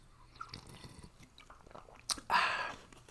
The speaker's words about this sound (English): I apologize, I don't have my proper hydration. Let me grab a little sip of my water here.